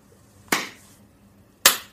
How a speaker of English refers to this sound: So we can hit a clap.